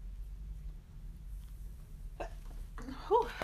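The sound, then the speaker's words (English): A quick breathy intake followed by one sharp, voiced sneeze about a second later, heard over a low, steady background hum with no talking. “I had to sneeze.”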